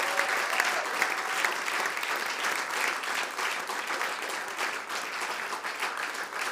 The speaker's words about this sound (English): So let's give Jesus a clap offering. Hadi İsa'yı alkışlayalım.